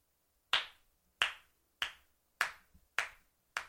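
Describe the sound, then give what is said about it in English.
A slow clap: six sharp, crisp hand claps at an even, unhurried pace, each ringing briefly before fading, with no voices. “Nice work. Slow clap.”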